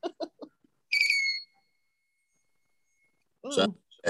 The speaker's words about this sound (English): when the coffee or whatever you're pouring into the cup, I'm trying to find it here. Whenever it touches the prongs, then it emits a tone. Plays music, whatever.